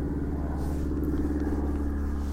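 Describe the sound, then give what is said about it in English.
A steady, low droning rumble from an airplane passing overhead as it comes in to land at Santa Fe Airport, with a layered engine hum that holds constant and loud throughout, and no one talking. “Plane coming in for the towards Santa Fe Airport.”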